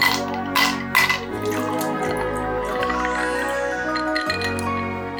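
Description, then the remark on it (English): The lid being worked off a bottle of Aber Falls Orange Marmalade Gin, a Welsh gin, with a "Tonic Screwdriver": a few sharp glassy clinks and clicks at the start, then a steady, wavering buzzing tone that shifts pitch in steps, with no talking. “Out the Tonic Screwdriver and get the lid off.”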